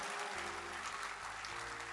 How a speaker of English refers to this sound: Will you serve the Lord with everything that you are? Give the Lord a louder hand clap. Hallelujah.